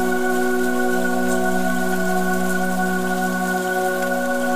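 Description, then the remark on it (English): Summer rain falling in a steady, even hiss with soft patter, underlaid by sustained low humming tones that hold unchanged throughout; no voices. “As you listen to the rain, synchronize your breath with its pattern.”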